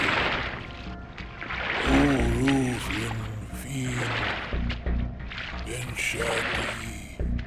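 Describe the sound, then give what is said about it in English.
Steady sloshing and splashing water as a small rowboat, hitched up by a man, is towed ashore through the shallows, fairly loud, with indistinct voice-like sounds rising over it now and then. “It sounds like he hitched up my boat and towed me ashore.”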